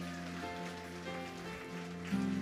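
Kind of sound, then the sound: crowd, audience applauding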